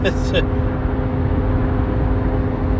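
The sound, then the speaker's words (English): A steady roar of road traffic during a road trip, with a deep engine hum that stays even throughout and a couple of brief high chirps right at the start; sunny blue skies after a significant amount of rain. “Traffic, and then when you throw rain into the mix, makes things all the more fun.”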